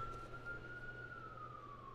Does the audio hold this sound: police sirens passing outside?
yes